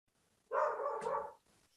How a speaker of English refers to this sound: That's my dog in the background roaring approval